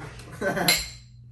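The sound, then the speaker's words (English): A brief, bright clink of glasses touching, like a toast, with a short ringing tail that fades quickly over a low hum of background noise. “Cheers.”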